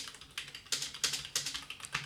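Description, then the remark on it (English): Quick, uneven taps on a computer keyboard as a reply message is typed, a run of crisp clicking keystrokes with no voices. “I will just write back to her.”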